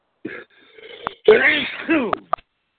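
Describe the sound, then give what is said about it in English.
A loud, sudden sneeze bursts out with a breathy, wavering vocal tail, preceded by a short intake of breath and followed by a few faint clicks. “You okay? Bless you.”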